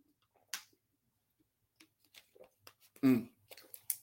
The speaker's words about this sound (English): Sorry. Let me just get a little sip of Perrier here.